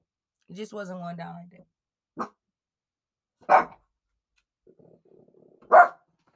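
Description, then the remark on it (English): A dog barks three times, each a sharp, loud bark separated by pauses of a second or more, following a brief drawn-out voiced sound at the start. “So, my dog is messing up my whole audio right now. Can you shut up?”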